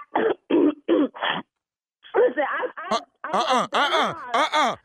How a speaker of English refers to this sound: See, there it is, right there. That's it, right there. Did you just cough again? Did you just cough?